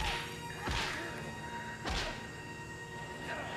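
A baseball bat repeatedly strikes a pile of leather jackets and baseball gloves to make punching sound effects, giving two heavy, muffled thwacks about a second apart and a fainter third, over a low background hum.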